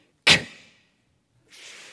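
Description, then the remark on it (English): Audience members' voices imitate a snare drum with a sharp, breathy burst that quickly fades, followed after a pause by a softer, sustained hissing crash. “You need your snare drum, which goes...”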